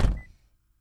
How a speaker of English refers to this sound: Okay, cutting the door, closing the door, and then we can start again.